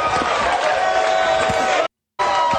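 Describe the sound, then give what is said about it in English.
A loud, dense wrestling crowd roars and yells continuously, many voices chanting "midget fight" and blending into a steady wall of cheering that drops out abruptly for a moment near the end, then resumes. “I love the fact that they're yelling, midget fight, midget fight.”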